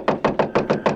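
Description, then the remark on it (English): Six quick, evenly spaced knocks on a locked door to a room, loud, in a brisk steady rhythm with no voices around them. “I would like to knock on it.”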